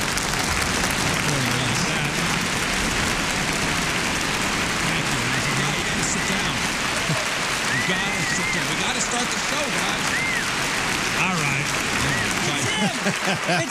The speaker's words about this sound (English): So I walked down on stage, of course, thunderous applause. Thunderous. It's still going.